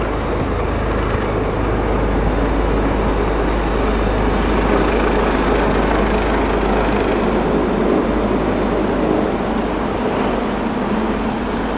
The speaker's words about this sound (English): All right, I'm at a hospital, so the helicopter will be very loud.